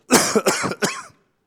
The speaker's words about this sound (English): I'm going to cough here, so hold on.